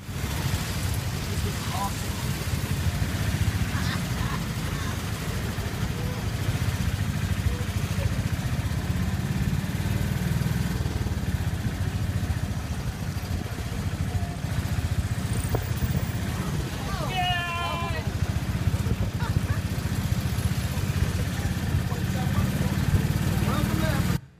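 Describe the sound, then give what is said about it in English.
A tuk-tuk's small motor rickshaw engine drones steadily for the whole stretch as it navigates a traffic circle in Kenya, wrapped in rushing traffic noise, with a brief chirping horn-like sound partway through. “In fact, here's a video of us navigating a traffic circle, one of the scariest moments of my life, but just take a look here.”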